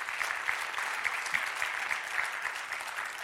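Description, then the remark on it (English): A church audience gives the Lord a clap offering, clapping steadily in a dense, continuous wash of many hands applauding at an even loudness, with no voices standing out above it. “Then come on, give the Lord a great clap offering, amen.”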